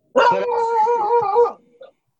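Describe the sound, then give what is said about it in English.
A dog named Winston lets out one loud, drawn-out howling bark that holds a steady pitch for over a second, followed by a faint short whimper. No one speaks. “Yeah, he's just barking out of nowhere.”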